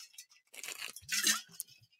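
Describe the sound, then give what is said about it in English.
A glass clinks lightly, then comes a short slurping sip of water and a soft swallow, with faint wet mouth sounds afterward. No one speaks. “Okay, now I'm going to take a sip of water, and and then we'll get into who advances here.”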